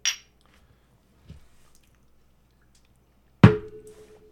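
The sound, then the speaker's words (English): A shot of Jack Daniel's Gentleman Jack double mellowed Tennessee whiskey being drunk: a brief bright glassy tick, a soft low bump, then a sharp clink of a glass set down that rings briefly before fading. No one speaks. “So we're going to take this shot on air as we normally do.”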